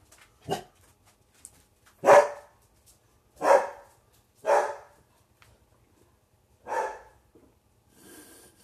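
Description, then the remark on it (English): A pet dog named Jack barks five times in short, separate bursts spaced about a second apart, followed by a softer huff at the end; no one is talking. “And my dog's barking again.”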